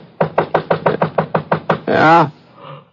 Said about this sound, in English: Must have been about 4:15 when I heard somebody pounding at the door.